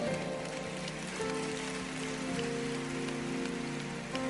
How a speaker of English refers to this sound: Are you clapping for what you are about to become?